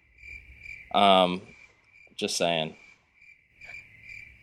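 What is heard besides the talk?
cricket chirping sound effect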